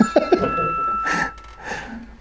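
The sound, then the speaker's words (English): Two phone alarms ring with steady, high electronic tones held throughout, while breathy bursts and brief vocal sounds rise and fall over them. “I got an extra phone now, so I got two different alarms going off.”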